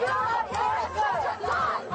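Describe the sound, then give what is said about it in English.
A crowd outside the Supreme Court, gathered in anticipation of the Dobbs decision, with many voices overlapping in a steady, loud babble of raised chatter and calls, no single speaker standing out. “The Supreme Court, where every day crowds have been gathering in anticipation of the Dobbs decision.”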